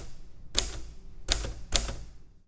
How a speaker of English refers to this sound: And now I'm typing this script, half looking at the keyboard, and I still am reminded of the cost I paid for comparing myself to others in that moment.